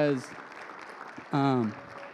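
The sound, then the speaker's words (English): An audience breaks into steady, crackling applause for its pastors, thanking them in their first week not preaching. The applause runs throughout, with a loud shouted cheer rising above the clapping at the start and again midway. “So what I want to do, because this is their first week not preaching, so what I want to do is just give them a round of applause and thank them for what they're doing for us.”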